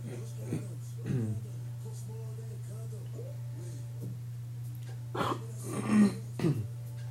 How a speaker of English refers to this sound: Down my bad to the listeners have to hear me clear my throat out and shit.